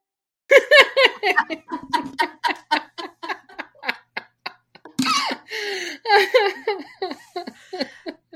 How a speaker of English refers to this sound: Your husband just had a sneeze so loud we heard it on the second story. And I thought he was screaming fuck.